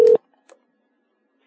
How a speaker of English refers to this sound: Hey, hey. It's ringing.